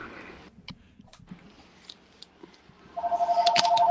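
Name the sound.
incoming phone call ringing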